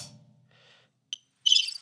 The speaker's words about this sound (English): Crickets. That's a weird cricket sound.